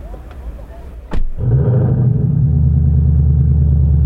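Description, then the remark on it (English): A car engine cranks and catches at about one second, then settles into a loud, steady idle rumble recorded by a microphone at the exhaust port, with harmonic drone continuing to the end. “So first I'll give you the startup sound, and I'll let it cycle through the startup sound, and then I'll give you some revs.”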